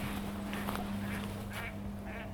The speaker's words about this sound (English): And a duck.